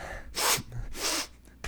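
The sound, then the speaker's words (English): A person mimics a man sitting on their left who kept sniffing, making three sharp, breathy nasal sniffs in quick succession with no talking. “I was self-conscious about that and like, middle school and high school of making sniffing too much”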